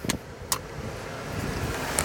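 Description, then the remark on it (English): Steady low rumble of a car moving along a highway, heard from inside the vehicle, with a small Chevy Spark tailgating behind, and a few brief sharp clicks near the start and end. “Somebody's riding my butt on... Is this Highway 41?”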